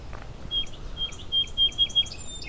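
A bobolink sings in flight, a rapid bubbling string of high, tinkling, metallic notes that tumble and jump in pitch, fairly clear against a soft outdoor background hiss.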